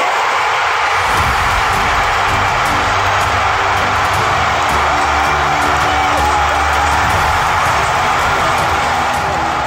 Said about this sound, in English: And this place is going absolutely bonkers. Petco Park was going bonkers, and I heard the roar of the crowd. Here's what it sounded like where I was at.